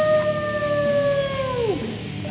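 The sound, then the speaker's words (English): A person howls like a wolf, one long steady high note that slides downward near the end, drenched in heavy reverb that leaves a washy, lingering tail behind it. “That's what fucking manly reverb sounds like right there, bitches.”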